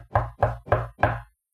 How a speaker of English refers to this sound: And he goes to his friend and bangs on the door. And he says, I got a visitor, and I need some bread. And the friend looks out the window and says, we're already in bed. Go away. But he continues to knock.